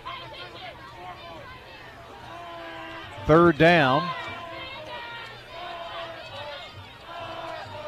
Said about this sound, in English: It really turned out to be a good crowd out here tonight. It was very late arriving. Yeah. I guess they waited in the car till the last minute. Then came in. Not many umbrellas up, so that's a good sign.